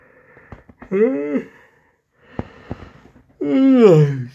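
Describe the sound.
A person yawns, letting out two drawn-out, voiced yawning groans that rise and fall in pitch, with faint breaths and small mouth clicks in the quiet between them.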